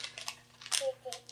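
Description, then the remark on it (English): Crinkling of a plastic minifigure blind bag being opened with scissors, coming in a few quick crackly bursts with short pauses between, over a faint steady hum; a soft vocal sound may also be present. “I opened the bag with scissors since the bags are so hard to open. Okay. I'm going to open them.”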